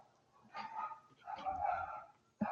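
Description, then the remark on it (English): Dogs bark and whine in the background, a few drawn-out yelps and barks over a couple of seconds, moderately loud, with no talking over them. “I guess dogs are going to make an appearance in my ears.”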